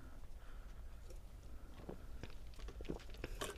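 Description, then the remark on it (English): Quiet sipping from a drink: a few soft wet clicks and slurps scattered over a few seconds against a low background hum, with no talking. “Sorry, I took a sip of a drink.”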